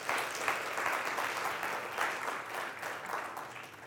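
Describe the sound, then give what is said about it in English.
An audience claps hands in sustained applause for God, a dense, steady patter of many overlapping claps with small surges in loudness, continuing throughout with no voices. “Give God a hand clap for loving you like that.”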